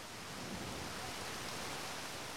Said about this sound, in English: So at this point in our conversation, it started raining pretty hard. You know, one of those classic spring rains that starts small then escalates really quickly.